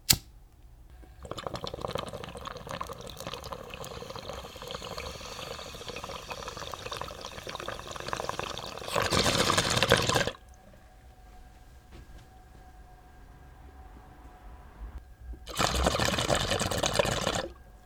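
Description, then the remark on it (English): Steady watery bubbling from a bong during a hit of banana punch runs for several seconds, fairly loud, followed by two short, louder bursts of gurgling separated by a quiet pause, with no talking. “That was such a nice rip of banana punch, and I still have like freaking 3 ounces of it, so much of it.”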